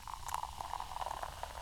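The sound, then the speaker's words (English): Sparkling red wine, number 6 of the drinks being tasted, fizzes in a glass, a soft continuous crackle of tiny popping bubbles with brief brighter spritzes, fairly quiet and steady throughout. “That's a nice noise. It's a nice noise, isn't it?”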